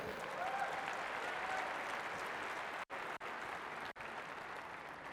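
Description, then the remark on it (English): An audience applauds steadily for about five seconds, dense clapping from many hands at an even level, with a few brief cut-out gaps near the end. “Give a big round of applause to my sister.”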